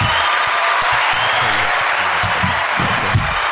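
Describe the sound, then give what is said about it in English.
A steady wash of audience applause, dense and fairly loud, keeps going for a few seconds with no break, while a faint low murmur of voices sits underneath it. “So a round of applause on that one.”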